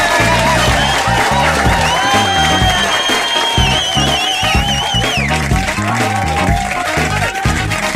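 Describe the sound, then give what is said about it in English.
A loud, steady round of applause mixed with crowd cheering and high whoops, the clapping dense and continuous for the whole stretch without letting up. “This time around, I give a huge round of applause to you, the listeners.”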